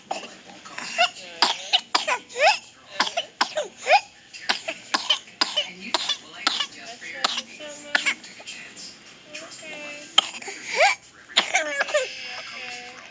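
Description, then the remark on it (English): A six-month-old infant with pertussis in a coughing fit: a rapid run of short, sharp coughs in repeated bursts, broken by a high-pitched, strained deep inhalation, fairly loud with no talking. “So what I'm about to play for you is unique because it's a six-month-old infant with pertussis.”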